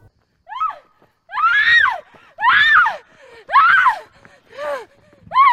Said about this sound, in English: She screamed and she screamed and she ran up the stairs as quickly as she could.